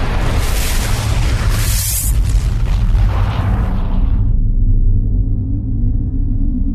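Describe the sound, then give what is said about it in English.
A massive, loud blast of the Edsel's retro cannons firing a scatter pattern and an incoming atomic torpedo exploding roars continuously, with crackling debris on top, then the hiss drops away leaving a deep, lingering rumble. No voices. “Incoming atomic torpedo! Fire the cannons, Ludy!”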